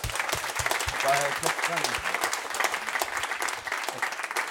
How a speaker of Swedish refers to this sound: En applåd.